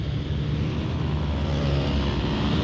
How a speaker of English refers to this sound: I'm having to wait here because there's rather a lot of traffic. Well, the road is fairly clear, so I'm going to go.